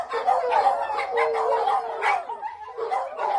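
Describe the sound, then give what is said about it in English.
Several dogs bark and yip over one another in a steady, overlapping chorus, fairly loud, with high excited whines mixed in and no pauses. They are riding a dog bus in Skagway, Alaska, run by a local dog walking and training service. “The passengers can be loud, but they're pretty well behaved.”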